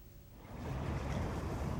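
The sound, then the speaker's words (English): Water sloshes and laps steadily against the water's edge in Long Island City, across the water from Manhattan, a broad washing sound that swells after a quieter start, with a faint windy hiss and no voices. “Along the water's edge, Nikki Lint patiently waits for her subject to sound.”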